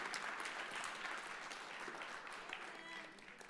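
A church crowd claps steadily in a sustained, dense round of applause as two pastors of the Next Gen team come forward to the stage; the applause stays fairly even in loudness throughout, with a slight easing toward the end and no voices standing out.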